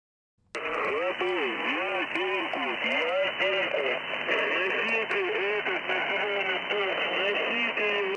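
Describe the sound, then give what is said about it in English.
Open Soviet military radio transmission: tinny, band-limited voices talking through a steady wash of static, cutting in abruptly and running continuously at a fairly loud level. “You hear that? Dog shit open Soviet radios.”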